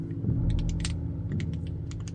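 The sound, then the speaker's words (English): Gentle, rapid clicking from a small wooden object handled gently comes in two short bursts, a quick run of light ticks, a pause, then another run, fairly soft over a low background hum. “Now it's wooden and it's makes a sort of clicking noise.”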